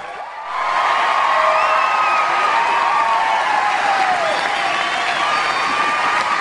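A crowd breaks into sustained applause and cheering, with whoops and shouts rising over dense, steady clapping that starts abruptly and holds loud throughout.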